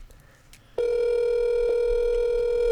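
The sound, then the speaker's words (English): After a brief moment of quiet, a telephone line tone comes on abruptly as the call is placed, a loud, steady, unbroken hum holding at one pitch with no talking. “And without further ado, I'm going to call the first guest,”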